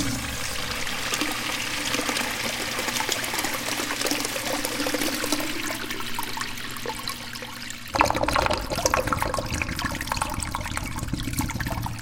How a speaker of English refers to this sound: just a few inches from the opening of the urinal, and I'm flushing it over and over again.